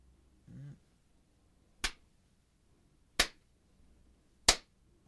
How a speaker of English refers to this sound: We just had the clap for the sync up the audio to the video